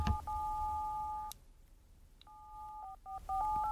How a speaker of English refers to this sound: Oh, hey. Hey, that was weird because it made like the sound of buttons being pressed on a phone as like the ring of a phone.